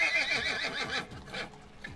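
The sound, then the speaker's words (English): A taxi horse whinnies loudly, a shrill, wavering neigh that rises and falls over about two seconds, with faint hoof clops underneath. “Whoa, kid, you nearly got hit by that taxi horse.”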